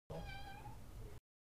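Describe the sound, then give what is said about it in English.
A single drawn-out cat meow, clear, with a bright, slightly falling tone lasting about a second, heard on its own without any talking. “Let me go get my cat.”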